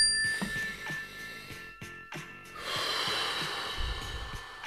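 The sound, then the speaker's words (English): A bell rings out with a clear, lingering tone that hums through the whole moment, while midway a long, deep inhale swells up, a group breathing in together beneath the fading ring, taking a deep breath on hearing the bell to bring themselves back to the moment. “When you hear the bell, let's just take a deep breath.”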